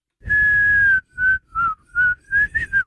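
A whistled tune, one long held note followed by five short choppy notes with uneven gaps. The whistling is clear and close, with no talking.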